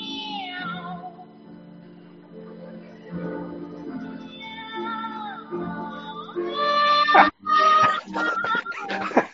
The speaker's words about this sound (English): That's one sad cat. It's the cat. It's the cat choir. His milk got spilled. It reminds me of like a Tom and Jerry cartoon or something.